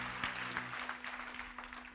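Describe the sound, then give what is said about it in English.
A church audience claps together in praise during a service, a steady, dense burst of applause at moderate volume, with a faint electrical hum running underneath. “Now, if you're going to help me preach, give him one more hand clap of praise, and you may be seated today.”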